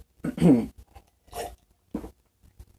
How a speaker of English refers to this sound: sorry, getting a sip.